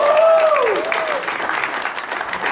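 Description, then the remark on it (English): A church audience erupts in steady applause mixed with loud voices shouting praise and cheering, a high whoop gliding downward early on, the clapping continuing densely throughout. “Let's give him a shout of praise.”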